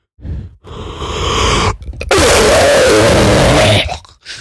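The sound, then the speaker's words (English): A voice imitates the harsh coughing from an internet meme: a short strained burst, then a longer groaning hack, and finally a loud, raspy, drawn-out cough-like wheeze with a whiny tone, fading at the end. “Speaking of coughing, you know that freaking meme where the guy he like coughs, and it's like a couple of people going, and someone goes, and then there's this guy that goes.”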